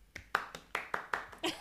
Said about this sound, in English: This movie, what an introduction. Yes, that's me clapping for my own movie.